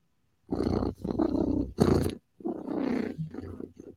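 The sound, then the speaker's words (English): A person imitates a cat's purr with a loud, throaty rumble in two long bursts separated by a brief pause. “Because if I'm purring, I'm happy.”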